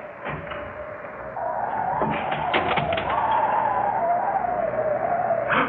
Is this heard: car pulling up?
yes